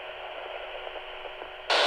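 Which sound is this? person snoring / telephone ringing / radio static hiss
radio static hiss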